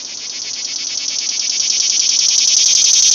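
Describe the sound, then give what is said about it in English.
Cicadas call in a loud, steady high-pitched buzz with a rapid pulsing throb, swelling gradually louder over a few seconds, on a warm afternoon in Houston, with no voices and little else underneath. “The entire ride home, the sound that would fill the warm Houston afternoon would be the call of the cicada.”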